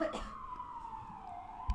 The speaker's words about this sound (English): Whoa, can you hear that siren?